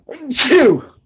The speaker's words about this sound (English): So I think the most important, I got to sneeze.